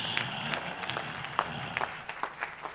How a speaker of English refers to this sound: Those who are clapping, may heaven smile on you and remember you.